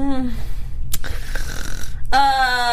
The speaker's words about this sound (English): Did you just fall asleep? No. I thought that was a snore too. I was like, what?